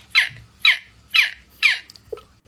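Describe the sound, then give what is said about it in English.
A girl imitates a seagull with four loud, shrill, evenly spaced squawking calls, each bright and harsh, followed by a short fainter chirp at the end. “This is a girl doing imitations of a seagull, and it's scary accurate.”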